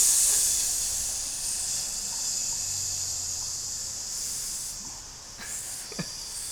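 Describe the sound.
A steady, continuous hiss of air escaping, like tires deflating, runs the full length with no voices, easing slightly toward the end before a faint click or two.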